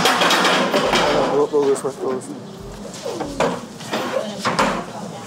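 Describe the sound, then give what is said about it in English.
Chairs scrape and thump as they're dragged across the floor into place for a cross-examination training exercise, a series of irregular wooden knocks and shuffles, with indistinct voices murmuring in the room. “Bring your chairs, leave your notes, leave your pens, just yourselves, you can bring water. So I want my first chair here.”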